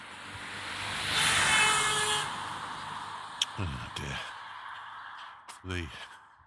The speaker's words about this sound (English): Sorry, a bit of hooting going on. A bit of crazy driving around at the moment.